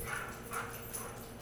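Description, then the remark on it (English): A few faint dog barks come at irregular intervals, roughly three short yaps over a steady background hiss, with no one talking. “The furry dogs are out.”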